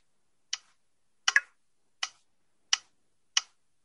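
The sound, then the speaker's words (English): Short, crisp clicks from a phone's VoiceOver screen reader with speech turned off, as the phone is navigated from app to app, at a steady pace of about one every 0.7 seconds. One click is doubled, and the gaps between them are silent. “But if you have no vision, all you're hearing is a series of clicks.”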